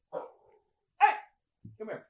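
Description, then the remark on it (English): A puppy gives three short, yappy barks spaced about half a second apart, moderately loud, with the last one coming as a quick double yip. “More puppy trouble.”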